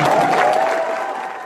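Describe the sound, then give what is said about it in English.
A crowd at a speech by a senator running for president of the United States cheers and applauds in a dense, steady wash of clapping and voices, loud at first and easing slightly over a second and a half, with a sustained whooping tone running through it. “It's always painful when people cheer meaninglessness.”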